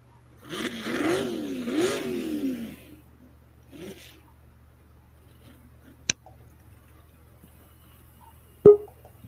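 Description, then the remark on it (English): A racing tractor engine revs loudly for a few seconds, its pitch surging up and down, then fades to a low background hum broken by two sharp, isolated bangs. “Now, on the tractor side over here, Mike Masonbrink moved into the lead.”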